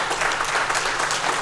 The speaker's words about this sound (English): Oh my, come on, give him praise. Come, you can clap.